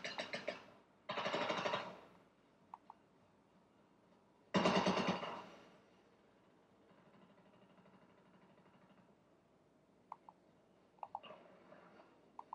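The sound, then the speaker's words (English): Loud bursts of rapid fake gunfire from a decoy grenade in a video game crackle in three short volleys, followed by quieter stretches with a few scattered faint pops. No one speaks. “Oh, that's a decoy grenade?”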